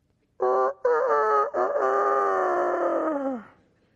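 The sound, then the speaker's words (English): A single rooster crows loudly: a few clipped opening notes, then a long, strained call that holds for a couple of seconds before dropping off at the end. “This is what we would hear as we hear the crowing.”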